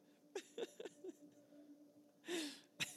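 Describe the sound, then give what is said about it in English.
A tired man yawns, a long breathy exhale with a falling voiced tone, after a few short soft breaths or vocal noises. It's fairly quiet, with no speech. “yeah, he's yawning tired.”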